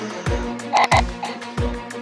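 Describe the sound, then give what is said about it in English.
Frogs croak in a steady run of low, throaty calls, with a couple of sharper, brighter croaks in the middle, close and fairly loud, no talking. “I'll be playing Talisa, your frequent dose of shenaniganery with her new pet, Toki. With the side of frog.”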